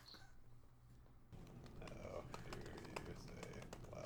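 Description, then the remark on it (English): Rapid, irregular clicking of keys on a computer keyboard, fairly quiet, as someone types a message asking how to say 'blaster' in Spanish; it starts after a second of low hum and continues steadily with a faint murmur of voices in the background. “Why are you typing it to her?”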